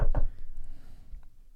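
Two quick, solid knocks on a door, fairly loud, followed by a short stretch of quiet.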